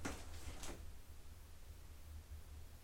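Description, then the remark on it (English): A door rattles in its frame from an air draft, with a few quick knocking bumps in the first second, then fades into a low, steady background hum. Quiet, with no one speaking. “I think it's the door, like with the air or something.”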